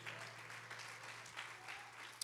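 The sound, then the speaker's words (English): A group applauds with steady, dense hand clapping that fills the whole stretch, a continuous bright patter with a low steady hum beneath and one sharper clap near the end. “We ought to clap our hands right there as well.”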